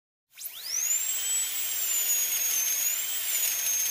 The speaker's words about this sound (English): It's a dentist drill. When they're cleaning in your mouth and they're drilling a hole. It's the dentist drill, and it gives me... I hate the dentist.